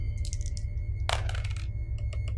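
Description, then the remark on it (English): Two dice are rolled across a hard tabletop in a game, landing a 2 and a 1: a dense burst of rattling clicks followed by a few lighter taps as they settle, over a low steady background hum. “will you roll your 2 positive dice?”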